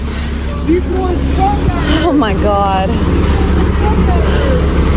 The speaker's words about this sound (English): Now comes the Border Patrol agent and apparently his personal truck. I mean, that's incredible. Wow, he threw a truck at her.